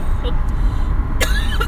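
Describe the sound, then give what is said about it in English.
One short, sharp cough breaks out partway through, fairly loud, over a steady low rumble of background noise. “I got some cough drops if you want some.”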